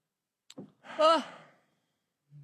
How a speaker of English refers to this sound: It was really short. That is a short yawn.